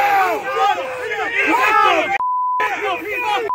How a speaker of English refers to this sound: The crowd erupts. We got weights and fish! There we go!